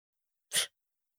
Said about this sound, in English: You sneeze at me.